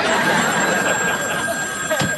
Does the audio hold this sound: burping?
no